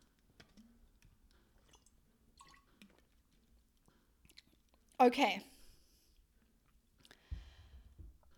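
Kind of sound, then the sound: human body sound, sipping water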